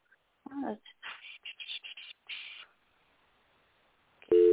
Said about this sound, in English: Shut, it's ringing.